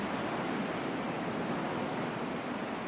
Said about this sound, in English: Noticing how beautiful the ocean is. It can be calm and soothing and change and have bigger waves.